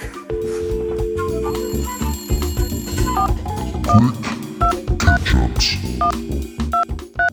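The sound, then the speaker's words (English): A telephone rings on an outgoing call, short repeated electronic tones sounding at a steady pace over a dense, busy background that continues throughout. “Well, thanks to everyone who answered your phone this episode.”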